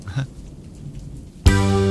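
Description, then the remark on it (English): Soft, steady rain patters in the background for a moment before a loud, buzzing synthesizer chord abruptly cuts in and holds. “Authentic rain, too.”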